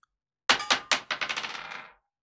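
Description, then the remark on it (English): Dice clatter across a hard table: a few loud, sharp bounces that quicken into a rapid rattle and settle within about a second and a half, with no talking. “So let's roll the dice.”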